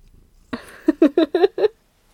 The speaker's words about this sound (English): Commence the purring into the mic.